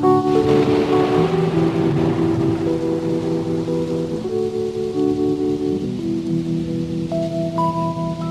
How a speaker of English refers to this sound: Thunder, bring in the thunder.